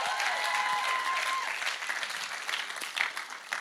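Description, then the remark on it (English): An audience at a church gathering claps steadily for two church leaders asked to stand up, in a dense, continuous wash of applause that holds at a fairly even loudness throughout, with a brief whistle or cheer near the start. “Girls, stand up, give them a big hand clap.”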